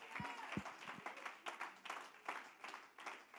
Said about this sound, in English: Somebody ought to clap your hands and give the Lord some praise.